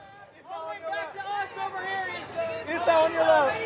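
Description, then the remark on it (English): A dense crowd of fans and press at a film premiere shouts and calls out at once, fans screaming a woman's name and media pleading for her attention, some voices rising into high, excited cries, forming a loud, continuous clamor. “it doesn't feel like it here as fans scream her name and the media gaggle pleads for her attention.”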